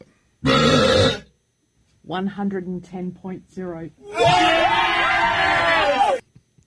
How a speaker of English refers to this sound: 110.0. That's the second loudest burp in the history of the world.